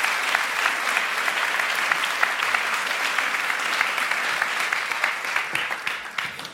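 A room full of people claps steadily for several seconds, a dense wash of hand claps that holds loud and even before thinning out slightly at the end.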